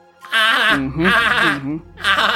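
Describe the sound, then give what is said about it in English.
A person's voice imitates a goat, letting out three wavering, quavering bleats in quick succession, loud, with a low hum underneath the later ones. “you sounded like a goat right now”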